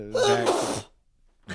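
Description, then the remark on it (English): A single loud sneeze bursts out with a sharp breathy blast that cuts off quickly, followed by a brief silence before a voice begins to speak. “God bless you, …. You are right over there. I still thought that one was going to be silent.”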